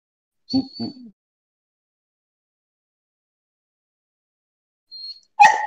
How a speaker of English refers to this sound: Full disclosure, he just peed in the corner, and now he's barking at me because he peed in the corner and he wants me to clean it up. So good job, buddy.